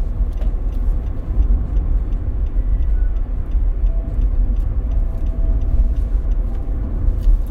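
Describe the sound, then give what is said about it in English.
Steady low engine and road rumble from inside a moving car getting onto a bridge after driving on a highway, with a faint regular ticking like a turn signal clicking over the continuous drone; no one speaks. “Now I'm hitting it, getting on the bridge, but that's always going to be the fucking case.”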